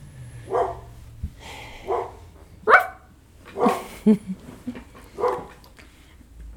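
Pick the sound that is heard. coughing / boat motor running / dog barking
dog barking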